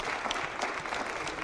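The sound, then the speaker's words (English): An audience claps their hands together, a dense, steady patter of many overlapping claps at even loudness with no voices over it. “Clap your hand, which is just every now and then.”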